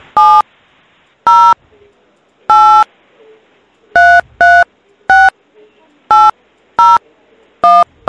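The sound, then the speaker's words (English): About eleven short electronic keypad beeps are pressed one after another at an uneven pace, loud, with faint background hiss between them as a caller keys in their phone number during a phone call to reserve a room. “Yeah, I just put my phone number in.”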